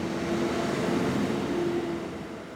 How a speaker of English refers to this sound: Every day, it seems, more and more trucks hauling sand, water, and equipment crowd into the streets of the county seat, Carrollton.